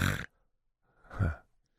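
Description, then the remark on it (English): A man imitates the single, non-repetitive snore he catches himself making in his sleep: one low, rough, snorting grunt lasting about half a second, after a brief burst of sound at the start and a short pause. “I'm catching myself snoring. Right? Just like a, you know, one of those. Yeah. Not like a, not a repetitive snore.”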